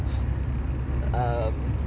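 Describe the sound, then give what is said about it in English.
Steady low rumble of a car interior while driving home from a day out about town, a continuous road and engine drone filling the whole moment, with a brief voice sound rising over it about midway. “We are in our beautiful state, and we are driving home from a day what out state, about town.”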